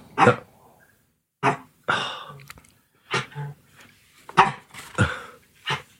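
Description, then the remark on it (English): A small female dog hangs off and tugs at a squeezy ball, letting out a string of short, sharp grunts and snorts at irregular intervals, fairly loud, with no one talking. “You think for a little dog like that, she's hanging off this sort of squeezy ball, and now she's...”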